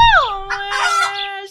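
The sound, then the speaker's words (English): A moving, singing toy chicken wearing a little wig, lipstick and high heels lets out a loud electronic squawk that slides down into one long sustained note, with rough crackly bursts layered over it. “You got me an indefatigable chicken that sings”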